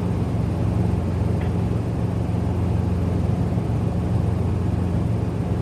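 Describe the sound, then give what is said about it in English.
A helicopter's engine and rotor roar steadily above a house, a loud, constant low drone that fills the whole stretch without pause. No one speaks. “So you're in a helicopter above the house now?”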